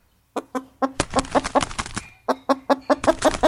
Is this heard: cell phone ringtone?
no